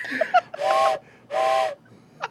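Two short, loud blasts of a steam train whistle in quick succession, each a breathy, hissing tone with a clear pitched core, followed by a faint chirp at the end.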